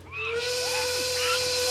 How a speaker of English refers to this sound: And do it with a spring in your step. Can't you whistle or something?